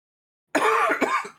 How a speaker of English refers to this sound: Coughing right now.